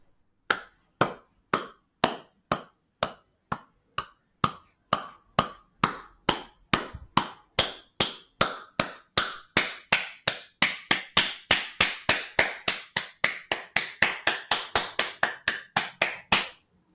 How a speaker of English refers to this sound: It's the sound of clapping. Somebody clapping their hands.